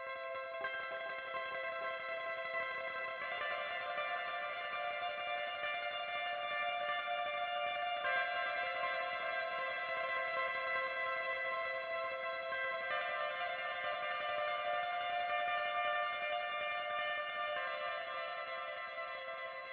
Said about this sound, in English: To give it even more texture, I laid a tremolo-style clean guitar with an echoey delay sound to give it kind of a spacey sort of feel.